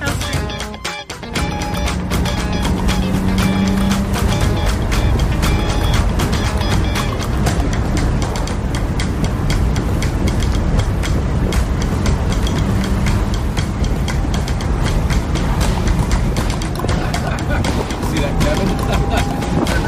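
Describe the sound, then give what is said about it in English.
A 1972 or 1973 car drives steadily, its engine rumbling loud with a constant roar of road and wind noise that holds from start to finish after a brief dip at the beginning. “now the owner of Kermit is getting in the yellow car. I love it. So I guess we're going to go for a little drive”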